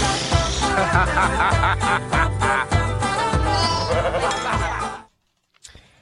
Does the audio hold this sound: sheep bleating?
yes